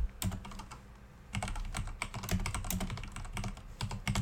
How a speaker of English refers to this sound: Sorry about the keyboard. It's a bit loud.